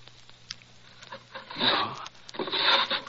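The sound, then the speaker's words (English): A wooden drawer of Professor Presbury's desk in his study scrapes open with two rough, rasping slides as it is searched for a cannula, preceded by a few faint knocks and rattles as its contents are shuffled. No one speaks. “I'll try the drawers. It's usually in the upper right.”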